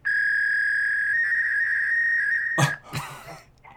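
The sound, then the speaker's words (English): A loud, steady electronic tone holds for over two seconds over a phone line, then breaks into harsh, noisy data-like bursts, much like a fax machine's handshake screech. “It's an fax machine?”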